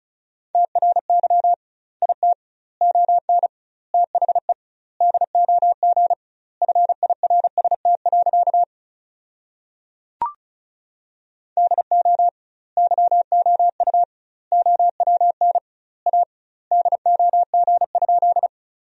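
Rapid Morse code at about 35 words per minute with doubled word spacing, sending sentences built from the 400 most common words: a steady mid-pitched tone keyed on and off in quick bursts, grouped with short gaps, pausing briefly midway around a single click.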